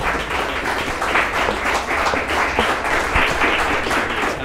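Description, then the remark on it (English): Steady audience applause before an intermission in a debate event, a dense wash of many hands clapping at an even, sustained loudness throughout, with no voices rising above it. “We want to give one final applause.”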